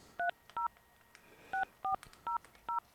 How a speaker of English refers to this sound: Did you dial all the numbers? Maybe I forgot to dial 9. Did I forget to dial 9?